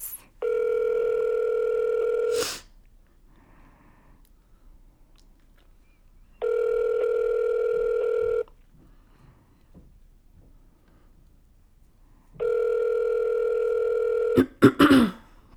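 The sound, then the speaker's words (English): A telephone ringback tone from an outgoing phone call repeats three times, each long steady ring lasting about two seconds with quiet gaps between, followed by a brief click and a short burst of noise at the end. “Because you were talking about having all the phone numbers in your phone, so I figured you were calling her.”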